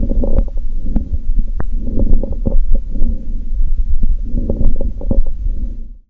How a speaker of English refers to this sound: This generally indicates that the patient needs to cough, or if they have an endotracheal tube, you may need to suction them. Crackles or rails are often heard in the lower portions of the lungs.